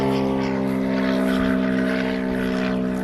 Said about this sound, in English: Got a plane going overhead.